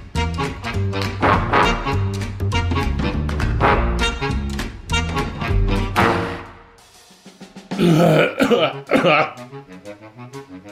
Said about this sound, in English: Musical coughs.